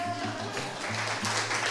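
A crowd claps in a steady, dense patter, brief and moderately loud, with a low hum underneath and no talking.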